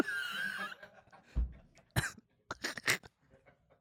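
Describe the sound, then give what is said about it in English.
A person imitates a dog sniffing for a truffle with a handful of short, breathy snorts and sniffs in an irregular burst, after a brief vocal murmur at the start. “When the dog sniffs the...”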